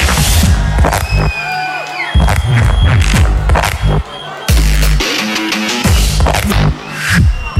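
A loud crowd in London roars and cheers for two DJs, with shrill whistles gliding above a pounding, throbbing bass beat that cuts in and out in bursts, like a packed club or rave.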